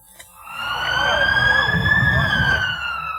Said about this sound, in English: A siren signaling the arrival of another child with bullet wounds.